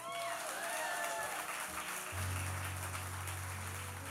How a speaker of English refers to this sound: This next part's going to be a clapping section. Okay, ready? You have kept my command to persevere. I will keep you from the hour of trial. Now you clap.